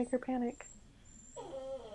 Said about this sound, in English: I have an angry puppy. I see that.